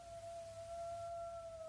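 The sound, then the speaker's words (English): A coyote howl in the hills, one long, steady, high-pitched note held without a break, faint against a low background rumble, with no voices. “Did you hear them? The coyotes in the hills?”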